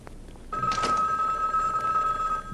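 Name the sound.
telephone bell ringing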